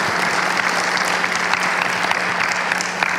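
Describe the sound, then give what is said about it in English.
An audience claps their hands to give God praise, a steady, dense, continuous patter of many hands at an even loudness throughout, with a faint low hum underneath and no voices. “If you believe that, why don't you clap your hands and give God some praise.”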